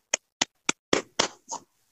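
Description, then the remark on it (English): A brief, sparse clapping: about six loud, separate claps at a steady pace, the first three crisp and sharp, the last few broader and smeared. No one speaks. “Round of applause, my fine fellows.”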